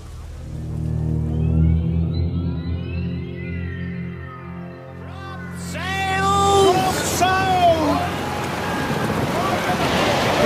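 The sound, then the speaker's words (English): Wind and sea waves aboard a ship, with a low, steady droning hum at first, then a rushing surge of wind and water joined by bird-like cries. “Can you listen this wind?”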